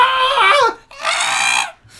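Two loud, shrill screams, the first bending downward in pitch before breaking off, the second held steady and harsh, with a brief pause between them.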